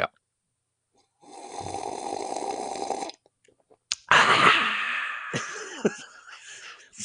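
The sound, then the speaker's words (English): A person vocally imitates their dad noisily slurping coffee, as he did with every sip: two long, loud, airy sucking sounds separated by a short pause, the second rougher and wetter with gurgling pitch slides. No talking. “Every Sunday, and of course multiple times, because he took every sip of coffee that way.”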